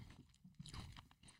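A crunchy bite into a caramel-topped wafer candy bar, followed by a quick flurry of snapping and crackling chews, loud with no talking.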